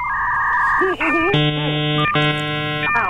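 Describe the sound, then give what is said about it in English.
A dial-up modem's connection handshake: a steady high tone, then warbling chirps, followed by two loud, buzzy blocks of harsh static-like screeching, with no talking over it. “Do you have the dial-up modem?”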